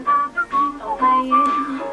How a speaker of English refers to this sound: It's … whistling. He's good. He's got a very strong whistle.